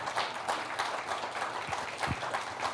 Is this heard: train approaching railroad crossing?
no